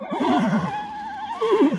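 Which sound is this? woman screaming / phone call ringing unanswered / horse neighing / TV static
horse neighing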